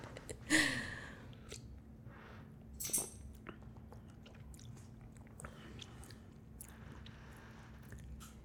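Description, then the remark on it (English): Quiet mouth sounds of someone biting into a savory cheese bite and chewing, with two sharper crunchy moments early on, then softer intermittent chewing over a low steady hum. “So sip first and then bite.”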